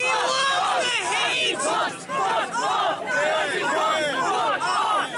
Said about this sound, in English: like I said, I got mad because these Antifa were chanting.